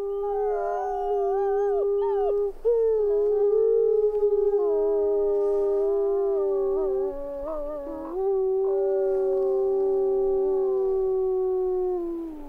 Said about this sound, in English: They're eerie, scary, full of mystery, and an iconic soundtrack of wild places, including Yellowstone National Park, where these Rocky Mountain wolves were recorded. Yellowstone's reporter in residence, Jennifer Jarrett, sent them to us.